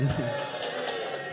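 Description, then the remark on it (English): Scattered studio applause during a live Friday radio phone-in: a handful of sharp, sparse claps spaced about a quarter-second apart, moderately loud, with a brief voice at the start. “rare applause for me.”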